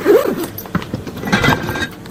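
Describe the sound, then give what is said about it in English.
A zipper is pulled closed on a bag, a quick rasping zip with scratchy bursts and a longer drawn-out stretch near the end, fairly loud, with no talking. “Zip that up.”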